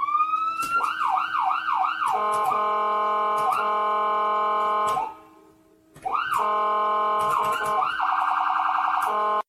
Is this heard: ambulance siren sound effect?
yes